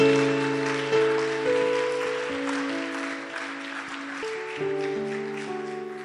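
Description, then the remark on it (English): A church audience claps steadily and continuously at the end of a service before prayer, a dense wash of many hands, while sustained organ or keyboard chords play underneath and shift a few times. “Oh, if you are clapping.”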